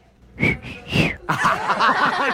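A short whistled call of three quick rising-and-falling notes, close and fairly loud, followed right away by a voice laughing or talking.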